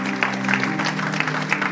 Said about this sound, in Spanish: Wow, hermano. Un aplauso al Señor.